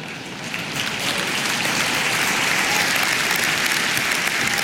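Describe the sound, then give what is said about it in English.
An audience in Finland bursts into applause, the clapping swelling within the first second and then holding steady as a dense, loud, continuous patter of many hands, with no voices on top. “But the reason you laughed and clapped is because you know it's not.”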